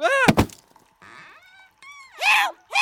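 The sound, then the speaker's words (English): A sharp wooden crack and thunk of a club striking a sorcerer and knocking him out lands amid a strained vocal cry, followed by groaning, wavering moans and a final pained wail. “Help! I just knocked out a sorcerer!”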